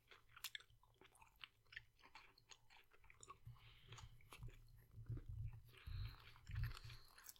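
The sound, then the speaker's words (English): Chewing of a Hershey's chocolate bar with a small amount of Reese's, with irregular moist mouth sounds and small crunches repeating steadily for several seconds, no talking. “All right, so a little bit of crunch.”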